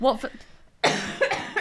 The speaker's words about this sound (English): I've still got this cough, it's coming back.